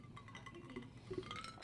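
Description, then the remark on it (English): Ice cubes, added to chill the wine, clink faintly against a wine glass, a few light, scattered taps over a quiet background with no one speaking. “Therefore, I needed my wine to be chilled, which is why I added some ice cubes.”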